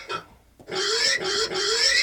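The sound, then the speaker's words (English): A pig squeals loudly and shrilly, a short cry followed after a brief pause by a sustained, wavering high-pitched squeal pulsing in three surges, intense. “Squirt like a pig, boy.”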